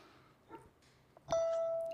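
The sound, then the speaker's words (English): A doorbell chime at a home in Yulee sounds once on a Saturday night, a clear electronic tone ringing out and sustaining as it slowly fades, preceded by a few soft knocks and quiet room noise. “When the doorbell rang at Deborah Crosby's Yulee home Saturday night”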